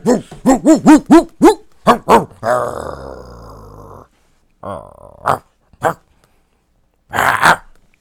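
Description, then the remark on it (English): A dog barks in a quick run of sharp yelps, then lets out a long, rumbling growl, followed by a few more scattered barks and a final harsh burst. “The dog is here.”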